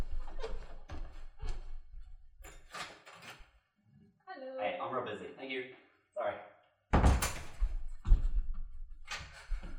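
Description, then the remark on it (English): A few heavy, dull thuds of someone knocking at the front door, loud, scattered among bursts of talking and shuffling movement. “It's someone at the door.”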